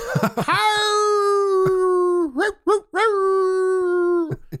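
Mournful wolf howls ring out in a forest: a long rising wail that holds steady before dipping, then a few shorter howling calls in quick succession.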